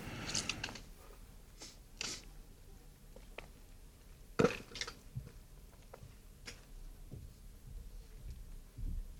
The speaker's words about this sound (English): I'm doing, I might take a sip here of my big gulp.